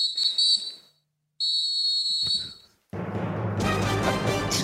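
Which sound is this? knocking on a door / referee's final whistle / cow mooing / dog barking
referee's final whistle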